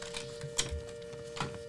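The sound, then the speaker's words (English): Quiet rustling of a chocolate box, with a few soft crinkles and two sharper crackles about a second apart over a faint steady hum. “That was the rustling of my chocolate box.”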